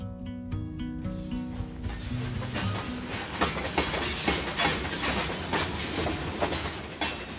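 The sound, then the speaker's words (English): A long freight coal train rolls past on the rails. A brief sustained horn-like tone opens it, then a steady loud rumble with rhythmic clickety-clack of wheels over track joints. No voices. “Long, slow trains of 100, 120 cars or more, each piled high with dull black coal.”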